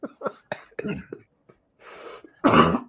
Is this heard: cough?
yes